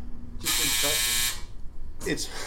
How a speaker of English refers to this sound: a buzzer goes off every time Andy lies